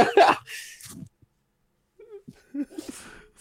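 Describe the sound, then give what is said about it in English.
A dog named Ellie lets out a quick, sharp sneeze, a breathy burst at the start, followed by a softer snort, then a pause and some low murmured vocal sounds. “My dog sneezed.”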